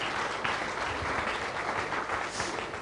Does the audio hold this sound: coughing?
no